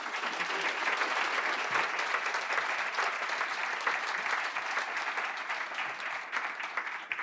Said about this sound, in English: But please get excited, clap your hands and welcome Dai Lee.